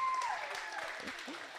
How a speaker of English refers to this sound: Applause for the underwear.